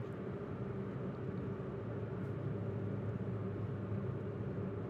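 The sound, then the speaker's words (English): A car engine, heard over a phone line while the caller is driving, runs steadily, a continuous low droning rumble with an even, unchanging hum throughout and no voices over it. “I can hear the engine.”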